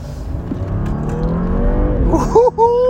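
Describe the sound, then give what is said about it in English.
The powerful 400-horsepower engine of a car with Brembo four-piston brakes rumbles steadily as it is driven, then revs hard near the end, its pitch climbing sharply as the car accelerates loudly. “That's what 400 horses do.”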